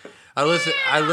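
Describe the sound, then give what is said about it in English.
A person's voice imitates a cat meowing, one drawn-out, loud meow with a wavering pitch, following a brief quiet moment. “It purred like a cat. Meow, meow”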